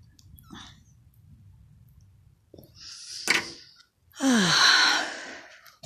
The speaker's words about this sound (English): I may be coughing because I am about to smoke a cigarette, and I have smoker's cough and have a tendency to smoke, cough when I smoke. So here I am lighting up a delicious cigarette.